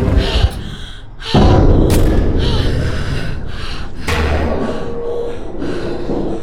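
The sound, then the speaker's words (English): A door slams shut with a sudden heavy thud, followed by a second loud bang a few seconds later, over a steady rumbling, clattering background. “Get the damn door closed.”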